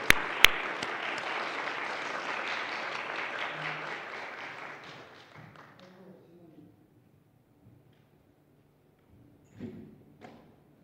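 A crowd applauds with dense, steady clapping for about five seconds, then it thins out and fades, leaving quiet with a few scattered thumps and brief murmurs near the end.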